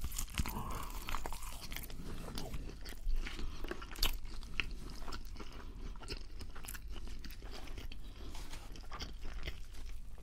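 Someone bites into and chews a Burger King burger, with a steady run of moist, crunchy chomps and smacking sounds repeating for several seconds, fairly loud, with no talking.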